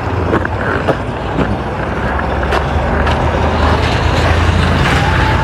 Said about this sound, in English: You hear that snow squeaking under people's tires?